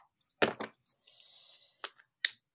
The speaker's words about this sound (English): I'm going to take just a moment to tune in and shuffle, and then I will pull some cards.